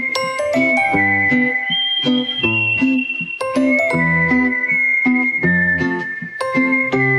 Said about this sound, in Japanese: 口笛タイム。